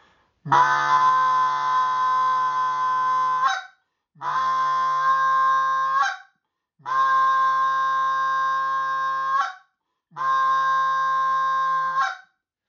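Four sustained notes blown on a goose call in the higher-pitched middle call, each about three seconds long with a brief gap between, strong and harmonically rich, ending in a quick upward break. No talking.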